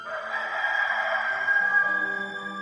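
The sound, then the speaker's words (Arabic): A rooster gives a single long, drawn-out crow, loud, holding its strained call for a couple of seconds while soft low tones linger underneath. “أقول لك يا بطرس، لا يصيح الديك اليوم قبل أن تنكر 3 مرات أنك تعرفني.”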